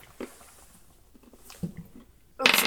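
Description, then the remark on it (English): A few faint taps and clicks, then a sudden loud clatter near the end as a small plastic twenty-sided die (d20) tumbles across a tabletop during a tabletop game. “So you double your hit dice. So I roll one of these.”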